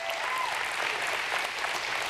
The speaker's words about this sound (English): yeah, we can clap for the Lord, it's fine.